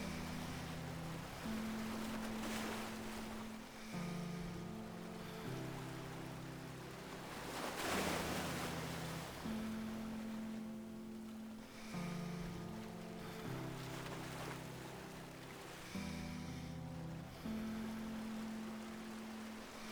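Ocean waves wash in and recede in slow, rolling surges every few seconds, their hiss swelling and fading over a steady, low sustained drone of tones.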